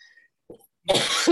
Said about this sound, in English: because I still do have a cough. And so I will probably cough a little bit, you know, just, you know. Yeah, that's the sort of annoying remaining thing that's going on.